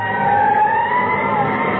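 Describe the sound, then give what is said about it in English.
A fire engine siren wails loudly and steadily, its pitch holding high and drifting slightly upward over a low rumble, with no one talking. “He's a three-alarm fire and a fire chief too.”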